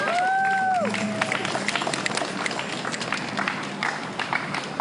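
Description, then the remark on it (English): A crowd at a protest action in front of the ICE building at 630 Sansom Street claps steadily, a dense patter of many hands that stays fairly loud throughout, with a brief high whistle-like tone gliding downward at the very start. “Can everybody clap up”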